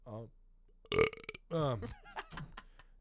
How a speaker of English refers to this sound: All that is burp. Yeah, all that is burp. All that is belch.